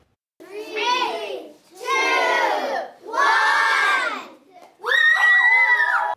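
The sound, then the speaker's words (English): A group of grade 2 children at Anne McClymond Elementary in Kelowna shouting and cheering in four loud, excited bursts, high-pitched voices overlapping, with brief pauses between each outburst, as their teacher throws boiling water into the freezing air. “That is the grade 2 class at Anne McClymond Elementary.”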